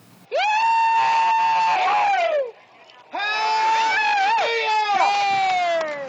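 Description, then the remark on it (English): Workers shout with excitement as a curtain is dropped, in two long, loud, sustained cries, one after another with a brief pause between, piercing, with no other sounds around them. “And once the curtain is dropped, the workers are shouting with excitement.”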